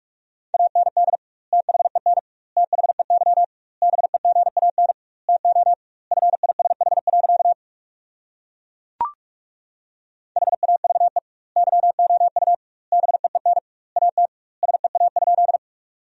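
Rapid Morse code at 45 words per minute sending sentences from the top 300 words with double word spacing, keyed as a steady mid-pitched tone, fast bursts of dots and dashes grouped into words with short pauses, a brief click in the middle gap, then more sending.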